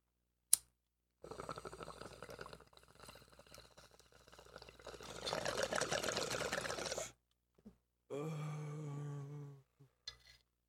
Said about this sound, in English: But before we go, I do have one more bong packed. Yeah, I do too, man. Right here. In which case, bros, for the road. Lighters out. Bongs up. Let's smoke.